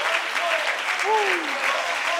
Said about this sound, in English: Oh, can I get everybody in this house to put your hands together? Come on, everybody, clap your hands. Everybody clap your hands.